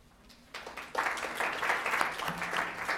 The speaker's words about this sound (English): Technically, we're supposed to do the visual cue, but yeah, I applauded myself, so yeah.